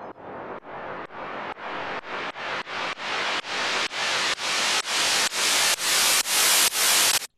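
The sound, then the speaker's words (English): Reversed white noise: a steady series of hissing bursts, each swelling up then cutting off abruptly, growing louder and brighter over several seconds, with no voices. “And then we have reverse, which is this.”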